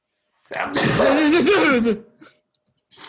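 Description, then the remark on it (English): One loud, explosive sneeze bursts out, a sharp intake followed by a forceful, noisy blast lasting over a second, then a brief breathy trail and a soft sound at the end. “He can't sneeze, guys.”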